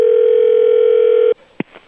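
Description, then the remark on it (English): A loud, steady telephone dial tone hums for over a second, then cuts off abruptly, followed by a couple of quick clicks and brief button-press blips as a number is dialed to call comedian Rick Shapiro. “Now let's take a break and see if we can get him on the phone.”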